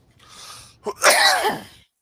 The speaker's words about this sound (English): this cough will never go away. It's ridiculous.